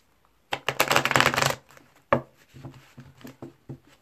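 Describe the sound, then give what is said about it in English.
A deck of tarot cards is riffled in a dense, loud burst of rapid flutter lasting about a second, followed by a sharp tap and softer scattered shuffling clicks. “All right, one more shuffle.”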